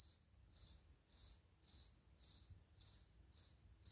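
cricket chirping

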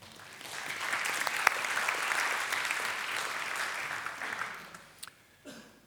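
audience clapping

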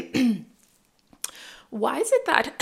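throat clearing

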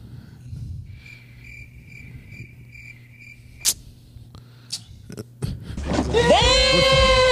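crickets chirping

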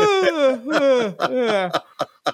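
yawn

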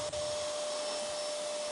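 vacuum cleaner running

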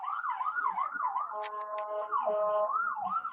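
ambulance siren passing

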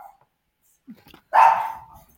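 dog barking

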